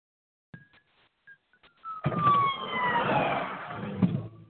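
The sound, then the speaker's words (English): An ambulance siren wails in abruptly and loudly after a few faint tones, its sweeping pitch sliding over heavy traffic rumble as it goes by, with no talking. “So now that process is done, hang on, I got an ambulance coming.”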